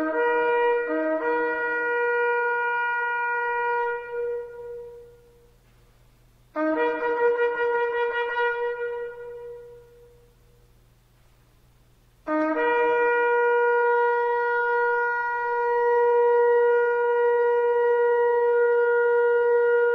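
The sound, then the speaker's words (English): A ram's horn shofar sounds three loud, brassy blasts with short gaps between them; the middle one wavers, and the last is held steady for a long stretch until the end. “he does a blast that lasts a long time, because that's specifically prescribed”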